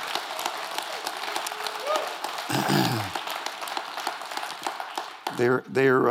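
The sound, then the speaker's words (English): An audience in Glenwood Springs bursts into steady, sustained applause for two pastors, a dense wash of many hands clapping at once, with a few voices rising briefly over the noise near the end. “I think you ought to give them a big round of applause for their good.”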